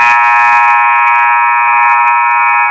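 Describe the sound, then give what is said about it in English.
A basketball game buzzer at a game between Morristown and the Golden Knights blares in one long, loud, unbroken blast, a harsh steady tone with a dense stack of harmonics that holds for nearly three seconds. “I just wait for that buzzer, man.”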